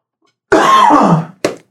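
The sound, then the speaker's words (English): A single loud sneeze, a harsh breathy burst lasting most of a second that tapers off, followed by a brief sharp sniff. “Bless you.”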